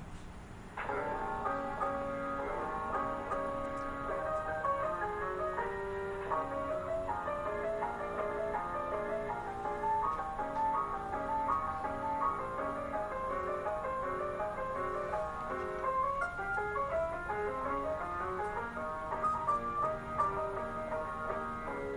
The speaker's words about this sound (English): I'm going to give you an example of what the player piano sounds like.